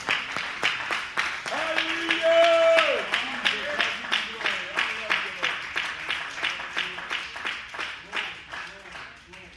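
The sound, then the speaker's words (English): A church audience at a worship service claps hands together in faith in a steady, even rhythm, roughly two claps per second, while voices call out and cheer over the clapping early on. “If you believe that, I didn't ask if you feel it, but if you believe that, if you have faith that God is going to do it, would you clap your hands in faith that God is going to do the miraculous here today?”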